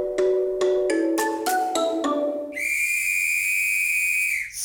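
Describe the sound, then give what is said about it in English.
A whistle sound effect used as a 'dad joke alarm': a quick run of about seven rising, bell-like notes gives way to a long, steady, shrill whistle blast that holds for nearly two seconds before cutting off. “And there goes the dad joke alarm.”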